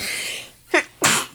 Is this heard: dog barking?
no